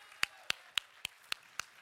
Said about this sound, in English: Oh, come on, Life Church. This is still a church that claps our hands. We raise our hands.